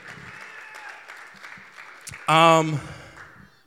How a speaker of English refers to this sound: I figured for this, we just came off a 21-day fast, but for that 21-day fast, yeah, you could clap it up for all y'all. You made it!